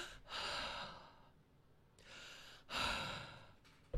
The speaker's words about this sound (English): Give me a nice deep breath.